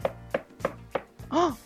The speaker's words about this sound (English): Is that someone knocking at the door? I think it is. But who could it be?